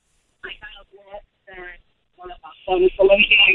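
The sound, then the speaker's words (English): A caller to the radio show Eye on Real Estate talks over a thin, tinny speakerphone line, the words smeared by echo that makes the speech sound hollow and doubled, growing louder and more cluttered toward the end. “slow down. You're echoing. So do you have the phone on speaker by any chance?”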